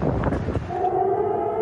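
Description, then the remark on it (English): A loud, rushing roar of tornado winds in downtown Nashville, which settles after a moment into a steady, droning howl with a sustained low tone underneath. “And if you can still hear me, that is a tornado.”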